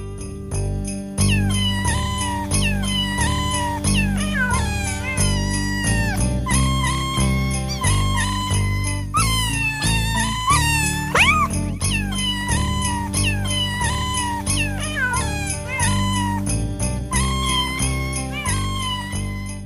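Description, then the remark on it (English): Cat meows are pitched and spliced into a cheerful Christmas melody, one yowl after another in a bouncy rhythm over a steady bass and light jingling backing, loud and continuous throughout. “her husband spent every day pounding pizzicato pussy purrs until he finally emerged with a tape. 'Twas the sound of Christmas future.”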